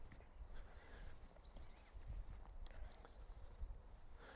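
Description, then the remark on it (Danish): Steady crunching footsteps of a person walking on a gravel path, an even walking rhythm of soft, gritty scrapes with a low rumble underneath and a few faint high birdsong chirps. Spruce, pine and other trees up to 4-5 metres tall line one side of the path, villas the other. “så kan jeg jo så afsløre, at jeg går på en grussti.”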